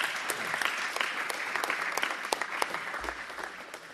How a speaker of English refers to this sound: So a round of applause for our mystery expert.